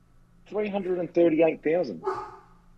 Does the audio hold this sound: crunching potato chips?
no